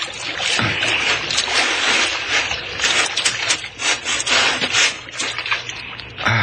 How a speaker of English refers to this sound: I'll hold on tight so you can pull the boat ashore after us.